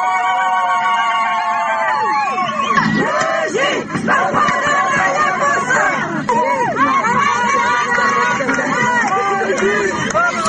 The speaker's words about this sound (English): Okay, so that was those were crowds of people. I believe they're sort of protesting. Maybe they're Kurdish, I believe, protesting the Turkish bulldozers building trenches, fortifications.